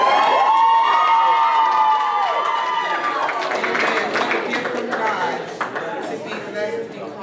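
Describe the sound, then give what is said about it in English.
A church audience cheers for mothers on Mother's Day, with high whoops and shouts rising over a dense crowd roar and scattered clapping that continues steadily for several seconds before easing slightly. “Cheer for mothers.”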